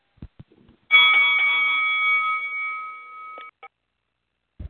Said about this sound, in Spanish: Ok, ya tú sabes, el sonido de la campana.